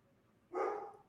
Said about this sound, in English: All right. Well, don't mind my dog who's barking in the background, probably at the mailman or something.